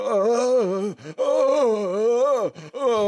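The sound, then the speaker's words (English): A voice imitates a man moaning outside restroom stall doors: three long, wavering, low-pitched groans with brief breaks between them, loud and sustained, with no words spoken. “And then we heard him just start moaning outside the doors, just.”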